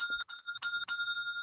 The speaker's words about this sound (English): I get the correct bell.